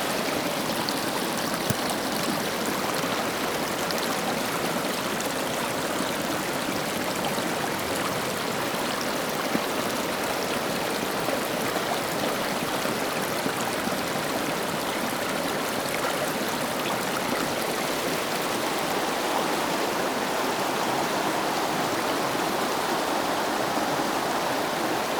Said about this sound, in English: I'm going to walk a little closer where the stream meets the river, and let's try it again with the stronger sound of water. How does this sound make you feel?